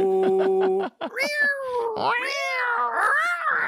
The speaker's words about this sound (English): You know when they do the little growl to cats? That's a freaky one when they do that. Yeah. It's like, what the fuck is that? It's like from their from their soul or some shit.